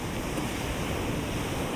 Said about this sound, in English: They're gentle, and then they grow a bit larger as they get closer to you. And you can feel the energy of the ocean as each wave washes up against the shore. The sound of the waves is so soothing